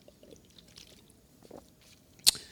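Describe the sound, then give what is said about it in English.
Soft plastic handling and faint wet sounds, then a sharp snap like the cap of a small water bottle twisting open, followed by a brief hiss as someone drinks from it. No talking. “Can you open this for me? I brought my little bottle this today for water.”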